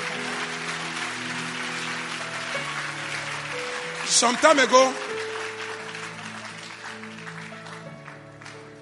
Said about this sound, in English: Oh, I don't like the clap offering.